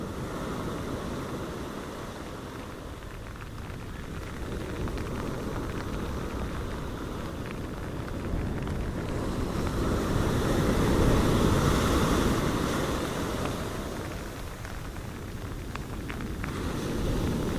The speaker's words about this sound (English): Beach rain. Rain on my poncho as I stroll on the Nha Trang beaches.